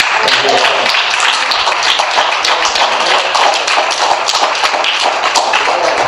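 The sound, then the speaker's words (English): A crowd claps hands steadily and loudly in praise to the Lord for the fathers, a dense wash of overlapping claps that holds at full strength for about six seconds, with faint voices mixed underneath. “We give a hand clap of praise to the Lord for these fathers.”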